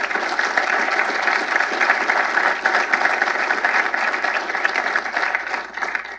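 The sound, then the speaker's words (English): Sustained audience applause in support of the people of Ukraine and President Zelensky, a dense, steady wash of many hands clapping at an even, loud level for about six seconds before easing slightly at the end. “How about a round of applause and support for them?”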